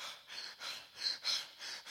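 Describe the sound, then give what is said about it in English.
A voice imitates the heavy, rapid panting of a man running, about six breathy huffs in quick, uneven rhythm, fairly loud, with no words spoken. “Then he ran to him. Panting.”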